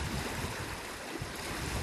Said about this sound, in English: Downstream now, I am in this absolutely amazing riffly water where if I was a fish, I'd be hanging out here because I know there's bugs, there's structure, there's cover from above with the ripples and the bubbles.